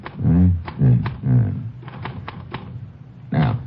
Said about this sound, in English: Just a second. I want to put a piece of paper in. Here, now. M-A-R-Y-H-A-B... You are typing the same phrase.